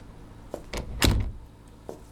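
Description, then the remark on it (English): An office door is pushed shut, a few light scrapes and clicks leading into one solid thump, followed by a faint latch click. No one speaks. “Close the door, will ya?”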